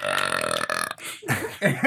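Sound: burp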